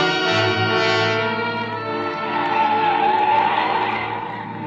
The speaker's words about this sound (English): Then we came on the landslide. It wasn't a big one, but it made a terrible mess of the road. He didn't slow down, and the car swerved crazily as it slipped from one side of the highway to the other.